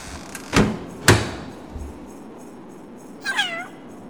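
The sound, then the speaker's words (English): Two sharp, loud knocks on a door about half a second apart, followed after a pause by a short, high, meow-like cry against quiet background hiss. “I just need to muster the chestnuts to go ahead and knock.”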